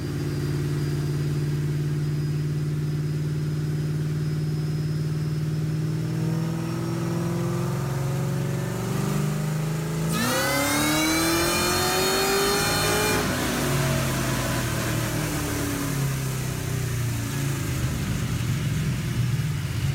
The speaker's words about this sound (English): Oh, that blue car all the way, the Mustang at the end. That one's pretty cool. That's a supercharged, like, Pro Street setup drag car.